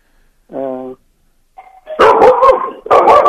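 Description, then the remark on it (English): A single doorbell chime rings out, followed after a short pause by a dog barking loudly in several quick, harsh bursts. “Somebody's at your door.”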